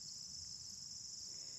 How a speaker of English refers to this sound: I can hear the bugs buzzing.